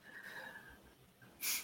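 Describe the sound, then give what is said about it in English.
Quiet breathing through the nose, returning to normal after a breath hold: a soft, faintly whistling exhale, then a brief, sharper sniffing inhale near the end. No one speaks. “And we'll do that for 3, 2, 1, and then breathing normally.”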